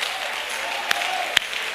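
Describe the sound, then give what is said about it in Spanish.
A church audience applauding the Lord steadily, a dense wash of clapping that holds level throughout, with two sharper, louder claps standing out near the end. No one speaks. “Come on, dale un mejor aplauso al Señor.”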